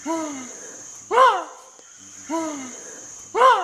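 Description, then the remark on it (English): Chimpanzees giving startled alarm calls when scared by a fake snake: two rounds, each a falling, strained harmonic cry followed by a louder, harsher burst, over a steady high-pitched insect whine in the background. “Listen to the sound that they make when they get scared by said fake snake.”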